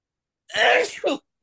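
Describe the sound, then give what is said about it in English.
A single sharp sneeze bursts out loudly, with a quick two-part rush of breath that ends within a second, surrounded by silence. “Bless me.”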